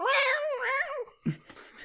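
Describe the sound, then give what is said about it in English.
A person voices a loud imitation of Blofeld's cat, one long wavering meow that rises and falls twice, followed by a few brief breathy noises. “it's Blofeld's cat again.”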